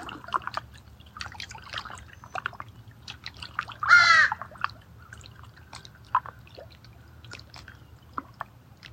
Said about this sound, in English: I like the contrast right now of the soothing sounds of the water with the kind of jarring sound of the crow. And being with both.